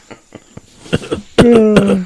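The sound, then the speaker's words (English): A few soft, breathy throat noises build into a loud burst of harsh, voiced coughing, with three sharp hacks over a strained, rough tone. “That cough has been getting worse since you got back from China.”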